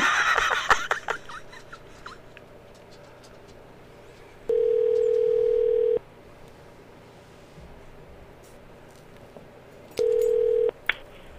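Fax machine tones come over a phone line: a loud, steady electronic beep lasting over a second, then silence and a second shorter beep, with faint line hiss and no voices.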